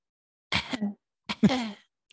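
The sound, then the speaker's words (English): Two short, throaty coughs about a second apart, moderately loud, sounding like a person deliberately faking a little cough rather than a real fit. “Maybe he'll get sick. Come down with a little cough.”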